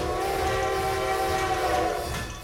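A train horn blares in a long, steady, chord-like blast over the rumble of a moving train, loud, fading slightly at the end.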